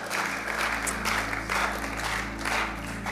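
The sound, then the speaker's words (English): An audience applauds steadily for everyone who helped out, many hands clapping in a dense, continuous patter for about three seconds, with a low steady hum underneath and no talking. “Hey, let's give them a round of applause, because that's amazing.”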